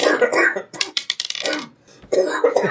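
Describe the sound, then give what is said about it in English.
Dice clatter and tumble across a paper surface in a quick burst of rattling clicks before settling, with people talking just before and after. “I'm gonna do this on the paper because that screws up my roll sometimes.”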